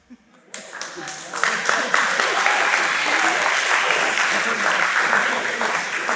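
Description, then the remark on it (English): An audience bursts into applause for a black-tie outfit after a few scattered opening claps, building quickly into a steady, dense wash of clapping that holds loud and even for several seconds. “That said, what we're celebrating by clapping for this outfit is colonizer formal wear.”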